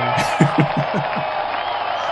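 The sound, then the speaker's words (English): A video game crowd cheers after the player's character lands the final blow on an opponent, a steady roar with a quick run of rhythmic shouted bursts early on before it settles into a continuous wash of noise. “The crowds approve.”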